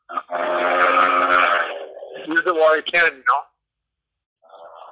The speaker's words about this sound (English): Oh yeah, I hear those cars in the background.